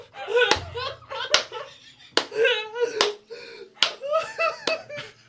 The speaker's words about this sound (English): Congratulations. Here's another round of slow claps for you, buddy.